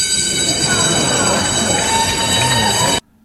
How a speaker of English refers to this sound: As the last question, of course, that was allowed for the class period, the bell rang right after that, quite literally, the bell rang.